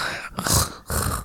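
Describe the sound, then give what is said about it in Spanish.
A person imitates heavy, labored panting, as if having just eaten about 20 tacos: two loud, breathy huffs in quick succession, with no speech. “No, se escucha como si acabas de comer como 20 tacos y estás respirando así.”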